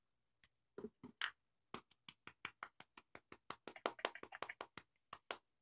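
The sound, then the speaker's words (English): Soft, polite golf claps: a few hesitant pats at first, then a steady run of about two dozen crisp, quiet handclaps in a loose rhythm, with no talking. “And cue applause. Golf claps around. Golf claps all around, shall we?”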